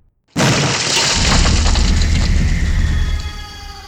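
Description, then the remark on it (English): A sudden, loud booming crash that erupts after a brief silence and rolls on as a sustained, deep rumble with crackling, debris-like noise, like a building collapsing. No one speaks. “And then, like, a minute later, you hear, like, you know, some footsteps, followed by the same sound, like, maybe, like a, it's like, you know, a building coming down.”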